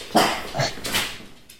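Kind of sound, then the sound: animal, dogs barking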